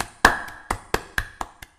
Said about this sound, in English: You have this 12-year-old who did a great job, by the way. Let's clap for him.